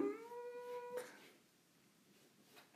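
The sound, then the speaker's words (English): A single drawn-out meow from a cat trying to get in, steady and fairly high-pitched, lasting about a second before cutting off abruptly, leaving only faint background hiss with no one talking. “Oh, sorry, my cat's trying to get in.”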